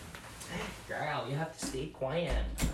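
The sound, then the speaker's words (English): A person closes their door with a single solid thump near the end, following a stretch of indistinct voice-like sounds. “Wait, guys, I'm gonna close my door because my dog is like scratching the thing already.”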